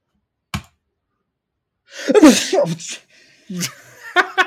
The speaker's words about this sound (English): I gotta say, I love in the game that when you click the red brick, he sneezes.